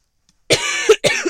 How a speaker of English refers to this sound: I have to cough. Oh my God. Sorry.